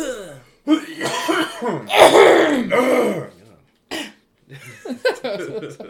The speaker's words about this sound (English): Clear your throat.